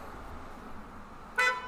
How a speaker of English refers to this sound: Someone's honking their horn.